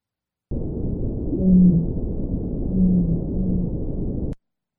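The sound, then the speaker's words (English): Low, drawn-out whale moans rise from a steady muffled underwater rumble, two longer calls with a shorter one trailing, no high-pitched dolphin whistles or clicks evident. “This is a dolphin and whale call.”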